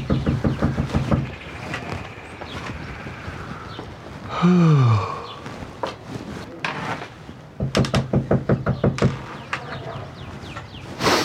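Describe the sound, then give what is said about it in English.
Several bursts of rapid, firm knocking on a door, separated by pauses, with a brief groaning or creaking sound in between. “Guess we can't make him answer the door.”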